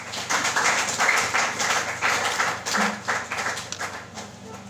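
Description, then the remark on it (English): An audience claps hard together, a dense, steady wash of many hands that holds strong for several seconds before easing slightly at the end, with no voices rising above it. “Let's clap hard for grace.”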